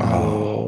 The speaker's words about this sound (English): Excuse my yawning.